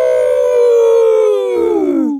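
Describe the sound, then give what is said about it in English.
A single loud, sustained howl held for about two seconds, its pitch sliding slowly downward and wavering toward the end, sounding like a voice mimicking a wolf, alone. “How did the howl work out at the end there?”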